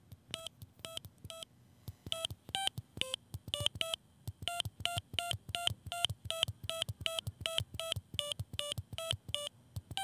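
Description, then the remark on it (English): A rapid sequence of short electronic beeps at shifting pitches plays the tune of Jingle Bells, each tone crisp and evenly paced over a low background hum, with no talking. “All right, so it's Jingle Bells.”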